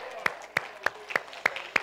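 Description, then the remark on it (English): A standing church audience claps hands in praise to God, six sharp, evenly spaced claps in a steady unison rhythm over a low background murmur. “Now stand all over the house and give God a great hand clap of praise.”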